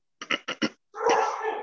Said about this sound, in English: Who the fuck has a dog? That wasn't a dog. That was my dad sneezing.